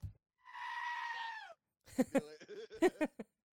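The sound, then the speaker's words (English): A goat lets out a loud, drawn-out, quavering scream lasting about a second, followed after a brief pause by a rapid string of shorter, choppy bleating cries. “Like the goats yelling.”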